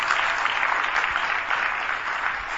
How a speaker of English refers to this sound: Let's clap for our brother. He's part of us.